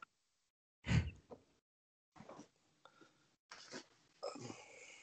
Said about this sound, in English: Dogs.